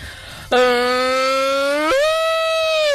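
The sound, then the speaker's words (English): A person imitates a cow mooing with one loud, sustained, buzzy vocal tone that starts low, then abruptly jumps to a higher pitch and holds until the end. “Is it a cow giving birth? It's just a cow.”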